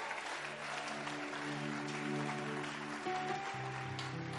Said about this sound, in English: So if the clap offering too is not coming, then I'm telling you, it will be very difficult to know whether you are alive for me to preach. Give God a mighty clap.